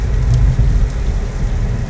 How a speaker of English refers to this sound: Ooh, this is a lot of rain. I gotta slow down. Man, I wasn't expecting that.